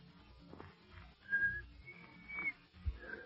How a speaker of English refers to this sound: Oh, shucks, I never could whistle.